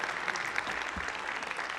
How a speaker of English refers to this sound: Would you stand? Put our hands together. Let's give the Lord a clap offering. Would you do that?